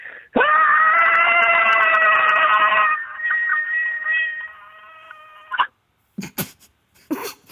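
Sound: scream sound effect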